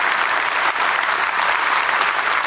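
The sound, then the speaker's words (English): A crowd applauds steadily, a dense, even wash of many hands clapping at once with no pauses, loud throughout and with no voices standing out. “America, come on, you can clap your hands.”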